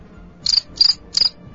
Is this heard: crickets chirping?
yes